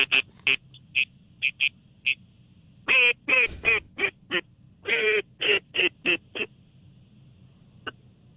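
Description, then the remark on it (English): An old gray duck call quacks in a rapid series of loud, nasal, buzzy honks, some short and clipped, others longer and drawn out, trailing off into quiet with one faint final note. “That's the old gray duck call.”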